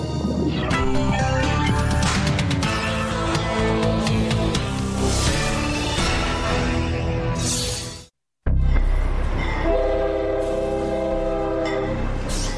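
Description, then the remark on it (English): An Amtrak Sunset Limited transcontinental passenger train rumbles past while its horn blares loudly and continuously, cutting out for a split second before the blast and clatter resume. “Amtrak Sunset Limited is the country's only remaining transcontinental train.”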